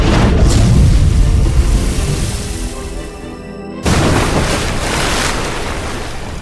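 A mini-sub rising from about 500 feet deep breaches the ocean surface: a loud, deep rushing roar that slowly fades, then breaks abruptly into a burst of hissing, splashing water and waves.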